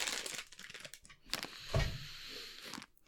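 Crinkling and rustling of a plastic packet of jelly beans being pulled open, with an uneven burst of crackles and a brief, sharper tear partway through.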